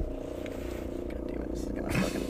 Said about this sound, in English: Is that a helicopter? Yeah. Oh, fuck. Okay, we'll just wait. I'm waiting for the helicopter